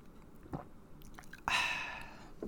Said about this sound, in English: But you know what? I'm getting a little parched. Let me have a little sip of bourbon here.